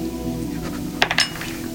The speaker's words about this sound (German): Einer von euch beiden darf mir einen D20 würfeln. Ich würfel ebenfalls. Ich würfel ebenfalls einen D20. Wenn ich das gleiche würfle wie ihr, dann passiert was.